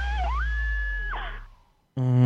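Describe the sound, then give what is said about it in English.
A single shrill, sustained scream sound effect, played to open a game segment, rises sharply, holds its high pitch for about a second, then trails away, followed by a brief silence before another loud, buzzy tone cuts in. “Every time I hear that scream, it's good times.”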